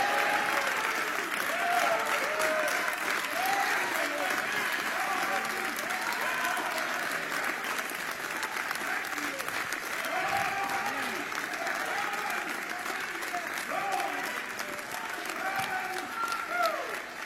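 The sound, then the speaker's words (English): An audience claps hands steadily in praise of God, a dense, sustained wash of applause, with voices calling out and murmuring underneath throughout. “Well, give God a real good hand clap of praise.”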